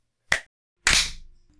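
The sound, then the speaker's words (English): Two sharp hand claps about half a second apart, made by two people clapping on the count of four, one clapping after the other; the first short and crisp, the second louder with a brief trailing ring. No voices. “Like, from my point of view, you clapped after me, bitch.”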